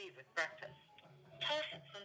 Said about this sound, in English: See? They call me because they want to talk to me, and then I get put on hold again.